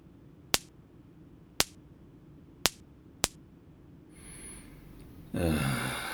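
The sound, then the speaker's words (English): Four sharp little pops of bang snaps crack out at uneven intervals, distinct, followed by a rising hiss and a louder rushing burst at the end. “I did manage to get some bang snaps, which also make a small explodey noise.”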